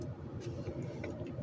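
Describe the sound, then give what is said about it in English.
Steady low rumble of car engines as Donald Trump's motorcade with the Secret Service drives through the hood, a continuous, fairly loud traffic drone with faint pulsing in the bass and no voices. “All these cars driving through the hood.”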